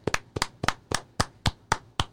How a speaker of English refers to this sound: Claps for Monty, claps for Chad, claps for Zach, claps for Chapman.